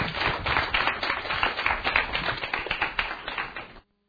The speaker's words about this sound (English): How about a round of applause